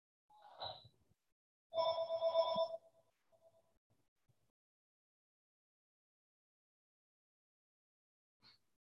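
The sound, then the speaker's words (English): Someone's telephone rings in the background once in a short electronic trill lasting about a second, preceded by a brief chirp. Quiet silence follows, broken only by a faint click near the end. “Hear somebody's phone ringing in the background.”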